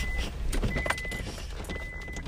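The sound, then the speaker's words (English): A car engine is started, turns over and settles into a low, steady rumble, with a few brief mechanical clicks and rattles over it. “We're starting the car.”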